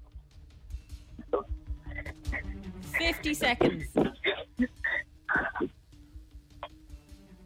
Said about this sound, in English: TV, please. Need to turn your TV on nice and loud.